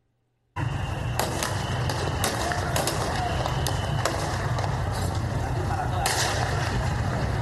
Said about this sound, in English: Now, at the La Carlota airbase that I told you that they already had hold of and control of, about 3.5 hours ago, there were reports of gunshots. There's a video. Let me play it for you.